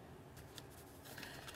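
Sheets of paper of a long letter rustle and shuffle in a few soft, crinkly bursts, with no voices over them.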